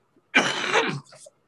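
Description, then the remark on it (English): A single harsh, raspy smoker's cough bursts out, lasting under a second, followed by a brief softer throaty rasp as it trails off; a lingering cough from smoking a lot of cannabis. “That random cough that'll never go away because I smoke a lot of weed.”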